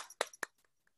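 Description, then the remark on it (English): A brief patter of applause from a class giving themselves a round of applause for being there: a few sharp, scattered handclaps over soft clapping noise, fading quickly into near silence. “Like we started the last class, everybody give yourself a round of applause for being here.”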